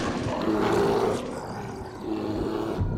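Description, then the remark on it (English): A howling, snarling horde of beasts raises a dense, continuous roar of overlapping growls and throaty howls, easing briefly in the middle before swelling loud again. “In its wake, a howling, snarling horde followed, their rage growing with their numbers as dark shapes swirled about them, urging them on.”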